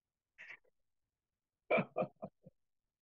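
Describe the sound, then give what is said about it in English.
A dog barks in a quick run of four short, sharp barks that fade in loudness, after a brief soft huff, with no talking. “Well, I'm gonna murder my dogs. Hold on.”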